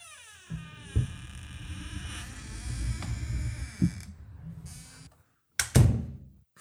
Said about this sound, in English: Your door sounds a whole lot like the door that we have in the studio. Yeah, we modeled our whole digs here after the studio. You did? Yeah, well, I thought, hey, that's a good sounding door.